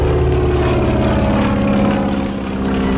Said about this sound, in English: he's just in time to see Boeing turn the plane into the wind, gun the engine, and lift off